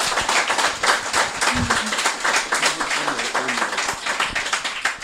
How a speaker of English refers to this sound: So I think that in its own right deserves a round of applause.